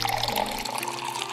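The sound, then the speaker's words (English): Liquid pours steadily and splashes for a moment, a continuous gurgling stream with no voices. “I would pour out my iced coffee, but it would probably stain my carpet.”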